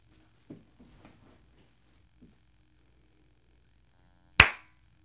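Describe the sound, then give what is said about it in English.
One sharp, loud hand clap rings out alone near the end, a crisp single crack with a quick decay, made once to mark the start of a recording. Faint, indistinct murmuring is heard earlier in the quiet. “I'm gonna clap once and then we'll go.”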